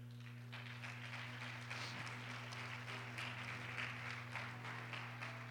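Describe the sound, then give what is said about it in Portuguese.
An audience applauding: a steady wash of many hands clapping together for several seconds, fairly quiet, over a constant low electrical hum, with no talking. “Então, pode aplaudir o Senhor, você começou.”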